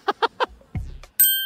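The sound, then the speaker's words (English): Three quick voiced bursts and a low thump lead into a single bright quiz-buzzer ding, a contestant testing their buzzer in a song quiz game, ringing out loud and sustained with clear high overtones until the end. “I mean, do you want to test your buzzer”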